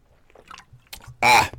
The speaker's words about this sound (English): Sorry, guys. Had to take a little drink of water. Talking for 8 straight minutes is not something I'm great at.